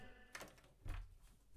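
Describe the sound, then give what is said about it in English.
A door slams shut with a dull, low thud, preceded by a faint click and followed by another sharp knock at the end, all fairly quiet with no talking. “What have I told you about slamming doors?”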